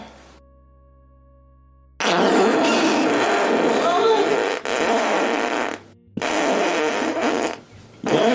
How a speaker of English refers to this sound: Wanna see me blow condoms up with my farts? I don't even think that you can do that.